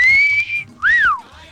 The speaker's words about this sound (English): And how about a quick whistle?